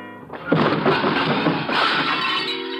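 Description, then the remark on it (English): A serving cart loaded with dishes is shoved into a wall: a loud crash of dishes and glass smashing, with a sustained cascade of clattering, clinking shards rattling for a few seconds after the initial impact. “Then my elbow bunched an object beside me, a serving cart loaded with dishes. I push it a few inches. The wheels don't make any noise. I give it a shove towards the wall and wait.”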